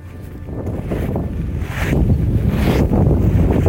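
Strong wind roars and buffets a microphone outdoors in a cemetery with neat rows of graves, as people walk through on crunching gravel; a dense low rumble that swells louder partway through, with no voices present.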